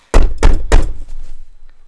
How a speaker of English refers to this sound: Why are we knocking, guys? I have a key.